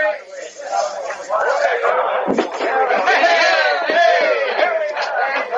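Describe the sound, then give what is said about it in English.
A loud, continuous dockside crowd in the dark as a ship's gangplank is lowered: many voices shouting and chattering over one another, with raised calls and yells rising out of the steady din throughout. “I don't want to lose you in that crowd on the dark.”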